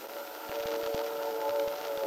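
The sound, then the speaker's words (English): A train rolls by a farmhouse at 7:15 with a steady, droning hum and scattered clacks of wheels on the rails. It is fairly faint and continuous throughout, with no voices. “Are you listening? You know, I'm never sure whether you're checking the train or your watch.”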